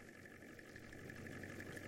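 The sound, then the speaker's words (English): A steady, droning massage chair motor rumble with a low, throbbing hum, much like an idling diesel engine, running continuously with no voices. “deciphering the difference between a massage chair and a diesel engine.”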